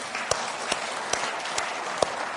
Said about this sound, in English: Hey, girls, well done. Men, can we clap for the woman this morning? Can we?